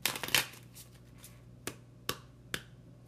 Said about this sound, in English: Okay, I'm going to shuffle and clear this deck.